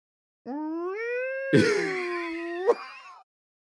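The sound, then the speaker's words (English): A single drawn-out, rising wail like a cat in heat, harmonic, turning harsh and strained midway before a sharp break near the end. No talking. “Yeah, it sounds like a cat in heat.”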